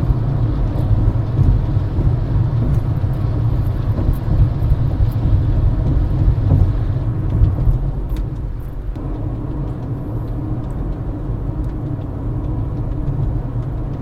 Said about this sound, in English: I don't know if you can hear that noise. That's the semi truck in front of me making a weird noise.